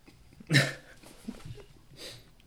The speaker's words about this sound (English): You are a vulgar crowd with your burps and your prunes.